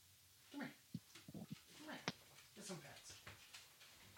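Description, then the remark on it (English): A dog being dog-sat whines in short, rising and falling whimpers while digging, with brief scratching and scraping sounds like pawing at the floor, over about four seconds; she is whining about what is outside. “I'm dog sitting right now, and she just does not like being in this room.”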